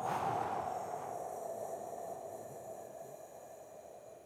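A long, slow breath pushed out steadily through clenched teeth, a soft airy hiss that gradually fades over several seconds, quiet with no talking.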